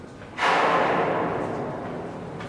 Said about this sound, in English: We can hear the containers being loaded. Yes. The cargo operation is ongoing, and that's what you're hearing, banging of everything, containers, the ship.